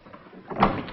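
A door opens with a short, soft sliding scrape that swells to a peak midway and then fades, with no voices.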